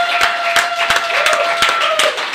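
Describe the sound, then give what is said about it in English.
A crowd applauds steadily for guest Ken Coleman, dense overlapping claps forming a continuous wash of noise with a few sharper individual claps standing out, holding at an even, fairly loud level throughout. “Well, guys, another round of applause.”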